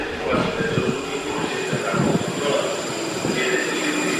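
A metro train rumbles steadily through an underground station, with a sustained high metallic whine and rattling wheels, loud throughout, with faint murmured voices mixed into the din.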